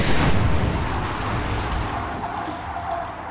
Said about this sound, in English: The backup lights at the time were acetylene gas lanterns. The hotel's head chambermaid, Elizabeth Wilson, entered room 217 with a lit candle to turn them on. She walked right into a room filled with leaked gas. The place exploded.